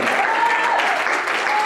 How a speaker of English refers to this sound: Oh, somebody ought to clap your hands.